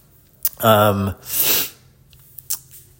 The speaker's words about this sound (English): excuse me one sec. Shit, man. Sneezing's cool though. Maybe I'll do a pod on that one day.